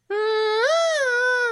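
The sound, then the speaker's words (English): A voice imitates a dove's coo with one drawn-out, steady hoot that lifts slightly in pitch halfway through, holding fairly loud for over a second with no other sounds. “Is it a dove? It is a dove.”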